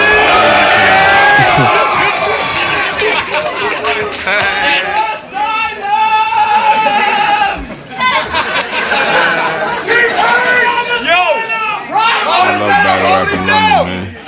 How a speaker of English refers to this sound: They're screaming ….